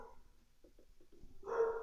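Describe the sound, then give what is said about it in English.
Dogs bark in the background: several short, muffled yaps in quick succession, then one louder, fuller bark at the end. No one speaks. “Those are my dogs.”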